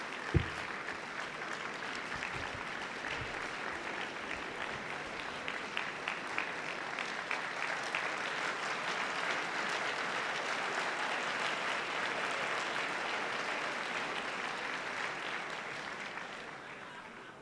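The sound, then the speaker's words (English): A crowd claps steadily and continuously for the whole stretch, a dense, even wash of many hands with no voices standing out, holding at a fairly constant level before easing slightly at the end. “Don't applaud for that.”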